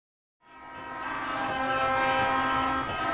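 Demonstrators in Niger, camped outside a French military base, blow horns and whistles together in a loud, continuous, droning chorus that starts abruptly and holds steady over a rough background of crowd noise, with no talking.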